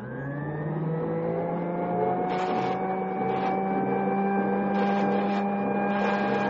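A steady, droning machine hum from wire running through coils runs throughout. Short, harsh bursts from an insulation fault detector buzzer cut in about three or four times, each sounding when a break in the wire's insulation passes through. No one speaks.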